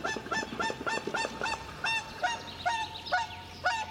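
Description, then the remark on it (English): Whooper swans call in a rapid series of loud, brassy honks, about a dozen in four seconds, with several birds overlapping against a quiet outdoor background, in a field recording from a rewilding site. “we're listening to one of them with the calls of the spotted crake, the common reed warbler and the whooper swan.”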